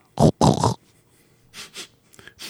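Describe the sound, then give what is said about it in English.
A person sniffs hard close to the microphone, a few loud, sharp inhalations in quick succession, followed by several softer, shorter sniffs. No one speaks. “I'm just sniffing.”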